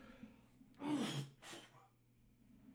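Two quick, raspy coughs close together, fairly soft and breathy, with no talking around them.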